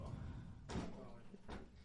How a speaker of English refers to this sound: Let me shut this door. Hold on.